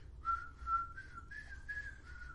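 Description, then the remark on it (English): A person whistles a short melody of about six connected notes as intro music, fairly soft, with a low background rumble underneath and no talking. “I can't whistle loud enough to do that right now.”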